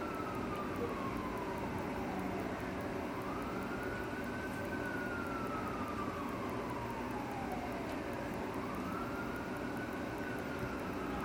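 An emergency vehicle siren wails in long, slow rising and falling sweeps over a steady traffic rumble, continuing throughout.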